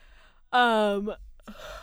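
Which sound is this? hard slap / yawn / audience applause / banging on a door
yawn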